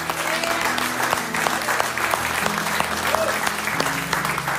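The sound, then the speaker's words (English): A church audience claps their hands for the Lord in steady, dense applause that stays loud and continuous throughout, with a low murmur of voices and sustained musical tones underneath. “Come on, let's clap our hands for the Lord.”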